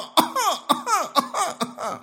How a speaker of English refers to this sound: This is what every second hacking cough is.